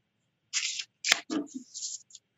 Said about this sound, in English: And I'm just going to shuffle the deck, shuffle.